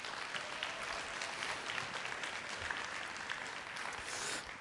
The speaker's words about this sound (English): So one last time, let's give them a round of applause.